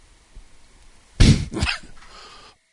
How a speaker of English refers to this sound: Excuse me, I had to cough.